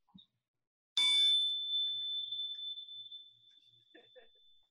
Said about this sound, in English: So when I use this chime, it gets their attention. And I'll do the chime and I'll say something I typically say.